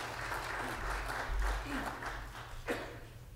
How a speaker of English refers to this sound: I didn't expect the clapping, but I'm a drummer, so that spoke to me.